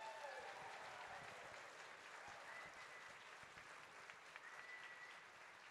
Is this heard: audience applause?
yes